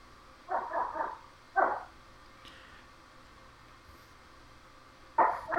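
A puppy yips in short, high bursts: a quick cluster of barks, a single yelp, then another yip after a pause, against a quiet background.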